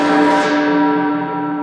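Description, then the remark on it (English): A single loud church bell toll rings out as the Toll the Dead spell is cast, its rich layered tones humming steadily as the bright upper shimmer fades away. No voices are heard. “I've got necrosis ready to toll decay, chimes at noon.”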